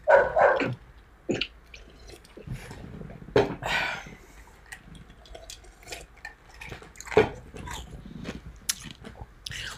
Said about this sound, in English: I'm going to go make this dog be quiet.